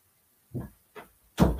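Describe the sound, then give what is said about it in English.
A door is opened to let a cat out: two soft, low clunks from the handle and latch, then a louder, fuller whoosh and rattle as it swings. No one speaks. “Let me let my cat out of here.”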